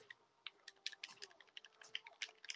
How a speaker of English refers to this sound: I like how in the background of this video, you're just going to be able to hear like clicking of buttons frantically. Yeah, frantic button mashing.